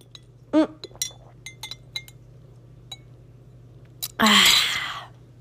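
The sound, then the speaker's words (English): A glass straw stirs coffee in a glass cup, giving several light, bright clinks at irregular intervals, followed by a short, louder swishing rush. No one speaks. “I'm stirring it on a glass in a glass cup with a glass straw.”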